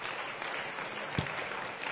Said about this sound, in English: And everybody said, in Jesus' name, everybody clap your hands unto the Lord.